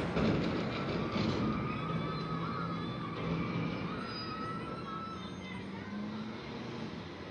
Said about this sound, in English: That sound of a half siren. That's supposed to be coming from the car wash. Understand that is amplified activity, making a car wash exceptionally loud.